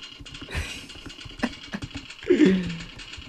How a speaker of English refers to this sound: Nah, you definitely type with your keyboard all day.